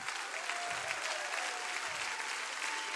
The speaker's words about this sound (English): I want you to clap with everything you got.